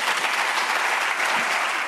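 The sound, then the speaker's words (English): An audience claps steadily after a professor's speech, a dense, even wash of many hands applauding together at moderate loudness, with no voices standing out above it. “Her speech was applauded, but also criticized.”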